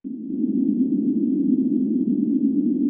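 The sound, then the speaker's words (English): A steady, low droning hum with a grainy, rumbling texture holds at an even loudness for a few seconds: a star's oscillations, about a month of data sped up and shifted into the audible range, with no voices. “The process of doing that means that what in real time is about a month's worth of data ends up getting sped up so much that it's compressed into a few seconds.”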